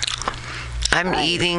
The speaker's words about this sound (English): I'm eating chicken from KFC right now, and it is so good.